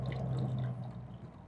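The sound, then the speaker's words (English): Fancy bottled water from Norway, bought at a store, pours steadily from a bottle for about a second, a continuous gurgling splash that tapers off as the stream slows, with no voices. “So this is the fancy Norway water. Fancy bottled water from the store.”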